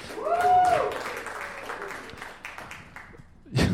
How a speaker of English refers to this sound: So it's bizarre to me, some people just applauded you for having a knife.